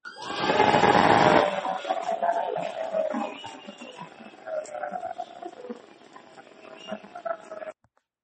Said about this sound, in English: Where's the boo button now?